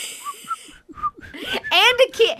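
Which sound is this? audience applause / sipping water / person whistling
person whistling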